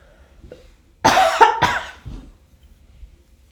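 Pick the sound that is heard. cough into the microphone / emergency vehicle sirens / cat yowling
cough into the microphone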